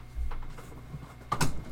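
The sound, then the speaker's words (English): A door swings shut: a soft low thud early on, then a sharp latching clack about a second later, moderately loud with no voices. “Shut my door, please.”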